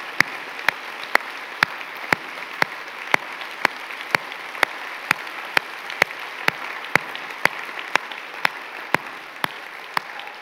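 Steady audience applause for military veterans standing to be honored fills the whole stretch, a dense wash of clapping with sharp, evenly spaced claps standing out in a regular beat roughly twice a second. No voices are heard.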